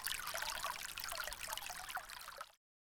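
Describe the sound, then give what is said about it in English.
A steady trickle of sparkling spa water runs from a crack in an altar stone in a small chapel for a couple of seconds, bright and splashy with small droplet sounds, soft, then stops abruptly. No voices. “You follow the sound of dripping water until you find yourself in a small chapel, where you discover a rivulet of sparkling spa water trickling from a crack in the altar stone.”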